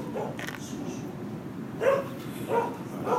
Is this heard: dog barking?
yes